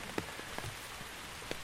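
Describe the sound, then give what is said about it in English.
Steady heavy rain, growing more intense, hisses across a hard surface, with a few sharper drops spattering now and then. No one speaks. “Oh, wow, the rain is intensifying here.”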